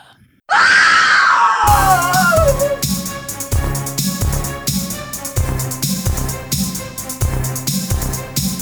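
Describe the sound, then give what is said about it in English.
A single loud, piercing scream that slides downward in pitch, cut off after about a second as a pounding, rhythmic music track kicks in and continues. “Yells.”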